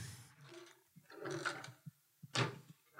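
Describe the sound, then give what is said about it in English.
A drawer in an ensuite bathroom slides open with a rough, rattling scrape, followed by a few sharp clicks and a final louder sliding rasp as it pulls out. “So I've got a lot of space in this bathroom, and I suppose I could clear out a drawer or two. Let me see.”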